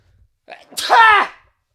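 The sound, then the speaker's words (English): A single loud sneeze: a short sharp intake of breath, then an explosive burst that trails off quickly into silence. “I'm going to sneeze.”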